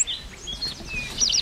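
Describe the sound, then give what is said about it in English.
A yellow warbler sings outdoors on a hill, its bright, high whistled notes rising into a quick cluster of sweet phrases toward the end, over a low rumble of background ambience. “But if you listen to your left-hand side, there's yellow warbler. And it's singing, sweet, sweet, sweet, I'm so sweet, or sweet, sweet, sweeter than sweet.”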